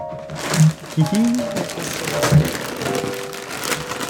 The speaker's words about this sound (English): That is 99-cent wrapping paper. That shit tears like tissue.